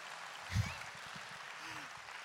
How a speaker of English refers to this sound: You see, if we're going to clap, let's clap. If we're going to do it, commit.